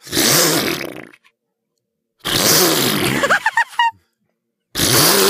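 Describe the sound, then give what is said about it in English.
A voice imitates a two-stroke chainsaw with a ripcord, making loud, buzzing, sputtering bursts: a long revving blast, a pause, another rev that breaks into choppy stutters, then a final roar. “I bet you guys didn't know that I can impersonate a chainsaw.”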